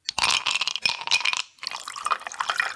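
Ice cubes clatter and clink into a glass, a quick run of bright rattling hits with a watery pouring sound, a brief pause, then more clinking and sloshing.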